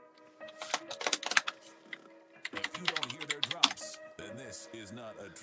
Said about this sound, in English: I apologize if the keyboard's too annoying. It's a mechanical keyboard.